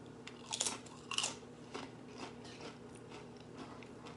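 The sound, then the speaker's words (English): Crisp crunching of tortilla chips being chewed, with two louder bites early on followed by softer, irregular chewing crackles over a low steady background hum. “Nice and crunchy.”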